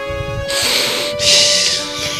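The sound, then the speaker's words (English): Two long, loud, airy breaths follow one another, a harsh rushing hiss like heavy breathing, with a faint steady hum underneath and no talking. “He's heavy breathing.”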